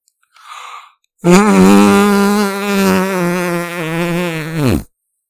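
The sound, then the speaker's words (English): A short breathy puff, then a loud fake fart noise made by mouth, blown into an arm, a sustained buzzy raspberry lasting several seconds with a slightly wavering pitch before cutting off abruptly. “Blows Farts Into His Arm”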